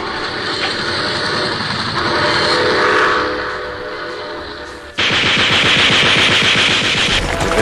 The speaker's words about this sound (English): And this is where I do something before I go into the comedy break by going, enjoy this train ride.